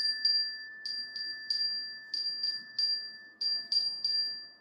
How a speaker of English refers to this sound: Oh, let it ring. Let it go on ringing. I won't answer it. I won't answer it this time. If it goes on ringing all night, I won't answer it.